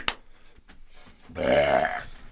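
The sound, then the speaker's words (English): A single long, loud burp from carbonation rumbles for about a second, its low voiced tone rising slightly in pitch, after a brief click and some soft breathing. “That's stuck in carbonation.”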